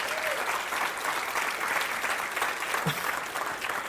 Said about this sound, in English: I want you to clap your hands like you mean it, would you?